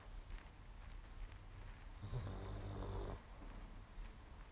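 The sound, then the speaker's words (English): A single soft, raspy snore from a dog lasts about a second amid otherwise quiet, faint, with no one talking. “And you can probably hear my dog snoring as usual.”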